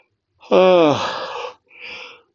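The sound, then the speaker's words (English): A single loud yawn: a drawn-out voiced groan sliding down in pitch, then a short breathy exhale, with no talking around it. “If I ever conquer my yawning, that'll be a red letter day.”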